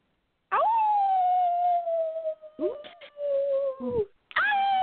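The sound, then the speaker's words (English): A person imitates a wolf's howl: one long, loud, sustained wail that slowly slides downward and wavers near the end, then a second howl starts after a short pause. “That was a strong howl.”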